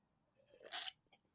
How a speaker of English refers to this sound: Take a sip of my beverage